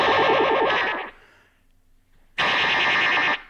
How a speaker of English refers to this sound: Okay. Ray gun, there you go. Anyway, there you go. So you get a lot of cool flanger effects, and let's keep going.